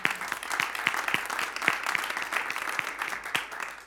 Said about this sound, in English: Our hearts in this spiritual community have touched a whole lot of people and have helped a whole lot of people and done a whole lot of good. And I know, yeah, we can clap on that.